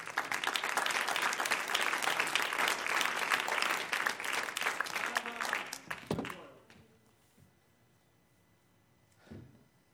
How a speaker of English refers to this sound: Oh, somebody clap your hands too.